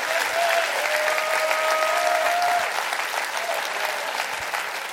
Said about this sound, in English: Come on, clap your hands. You can do that.